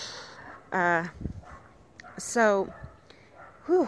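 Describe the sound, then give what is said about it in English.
A dog barks three separate times with pauses in between, each bark sharp, tonal and moderately loud, over a quiet background, coming from among nearby cabins. “There's other cabins around, so that's why there's a dog barking.”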